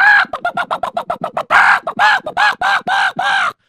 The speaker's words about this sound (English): And the chickens made a lot of noise. And he was getting a big headache.